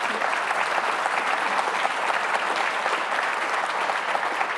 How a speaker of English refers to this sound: I'm totally not accustomed to people clapping. They're clapping. They're clapping for you.